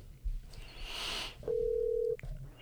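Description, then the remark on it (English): A phone call to a guest of an SEC West prediction show going through: a soft, hissy burst gives way to a single steady, mid-pitched ringing tone that holds for under a second before cutting off with a click. “But for now, we're going to go ahead and call our guest.”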